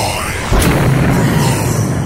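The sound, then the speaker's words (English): A loud explosion sound effect bursts in after a brief quiet moment, followed by a deep, rumbling low-end boom that lingers and rolls on until the end. “Oh, see, and even with that explosion, I thought I could do some tomato juice.”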